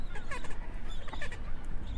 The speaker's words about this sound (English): These, they're calling, actually. It's a penguin call.